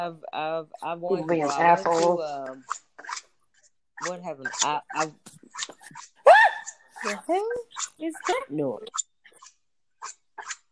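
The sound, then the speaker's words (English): A dog whines and gives short, high yelps, tangled with excited human voices and a sudden loud outburst partway through. “It was a dog.”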